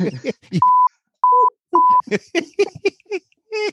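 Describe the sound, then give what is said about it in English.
Three short, steady censor bleeps cut in one after another, interrupting a man's speech, which resumes in quick bursts between and after them. The tones are loud, flat and evenly pitched. “I'm going to beep that and leave it because it's funny.”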